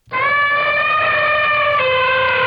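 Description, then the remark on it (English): A loud, brassy elephant trumpet blares in one long, steady, sustained call lasting a couple of seconds, with no talking. “An elephant? Yeah, it is.”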